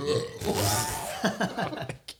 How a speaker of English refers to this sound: And that's a great burp there, bud.